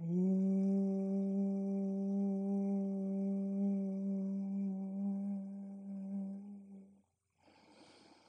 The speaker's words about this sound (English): And maybe a few rounds of bee buzzing breath now that you know the alignment. Big inhale. And bee buzzing exhale.